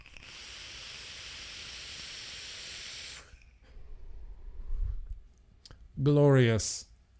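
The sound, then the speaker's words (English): A vape coil fires with a steady crackling sizzle for about three seconds on an Odin mod topped with a Death Trap 2 single-coil RDA, loaded with Pony on Acid e-liquid from Smacks, followed by a soft breathy exhale and a brief voiced sound at the end. “I got an Odin. It's topped with the Death Trap 2 single coil RTA, or RDA rather.”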